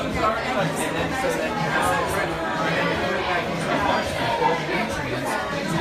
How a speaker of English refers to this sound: And the crowd's starting to file in during the pre-show.